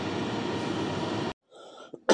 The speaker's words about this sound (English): Excuse me. My allergies are acting up, and I'm sorry that I'm coughing. I've been trying not to do it. But praise the Lord, I get allergies this time of year, but God knows that too.